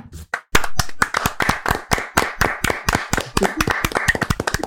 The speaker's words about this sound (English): Are you clapping